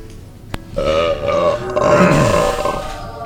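A long, loud, rumbling belch stretches for almost three seconds, its pitch wavering and gurgling, bracketed by a couple of sharp clicks, with no talking.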